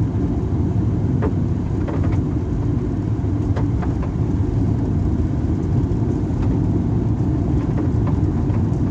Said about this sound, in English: Don't do it, you pickup truck. Definitely gonna do it. Don't let him in! Oh. He decided it was too steep, I bet.